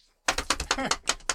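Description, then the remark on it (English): Rapid, heavy clacking of buttons being pressed hard, about eight sharp strikes in quick succession, fairly loud with no voices. “You're pressing buttons really hard.”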